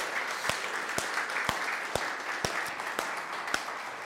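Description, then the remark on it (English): Sustained audience applause, a dense wash of many hands clapping, with sharper claps punching through at a steady, roughly half-second rhythm. No one speaks over it. “So we just give them a round of applause publicly.”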